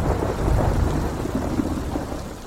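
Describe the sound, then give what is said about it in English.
A heavy thunderstorm roars steadily, with deep rumbling thunder rolling beneath a dense wash of pouring rain, loud, with no voices. “And we, you know, laughed at a thunderstorm.”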